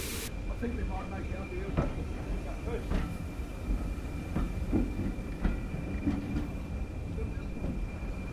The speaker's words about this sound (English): Whistle being blown, windows being shut, and the train is ready to move off.